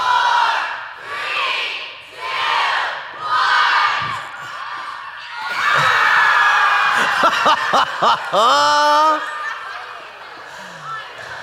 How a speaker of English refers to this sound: So after it splats, you guys cheer and everything, but I got something extra too, okay?